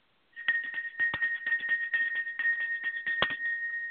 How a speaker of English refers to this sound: What I want you to do is just listen to the sound just for a second. It's just going to be a bell. It's going to help me to tune into exactly what I want to talk to you about. Here we go.